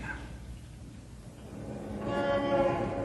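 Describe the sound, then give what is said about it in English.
City street traffic noise heard through an open window of a skyscraper 40 stories above the street: a steady low rumble of engines, joined about two seconds in by a loud, sustained horn tone blaring over the din. “Here we are in a skyscraper, 40 stories above the street, and yet that traffic noise would drive you crazy.”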